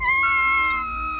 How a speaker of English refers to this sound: It's a horrible scream from the closet. Everyone is scared.